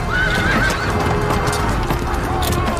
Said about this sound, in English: The people who are off are going to try and protect themselves from the horses' hooves. And the dust and the noise would be unbelievable. Screaming horses, screaming men, people yelling orders, trying to get their formations back together.